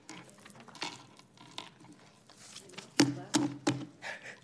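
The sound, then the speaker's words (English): Scattered hand claps from a small audience: a few soft, sparse claps early on, then three sharp, louder claps in quick succession near the end, with faint murmuring voices underneath. “So I heard the claps.”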